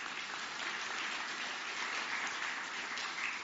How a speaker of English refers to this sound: And please give a round of applause to those who gave and will give.